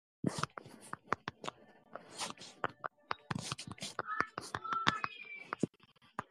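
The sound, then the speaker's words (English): Quick, irregular clicks and taps of someone typing a note on a keyboard, soft, with brief bursts and short pauses between keystrokes and a faint breathy hiss underneath. “I'm typing a note to myself.”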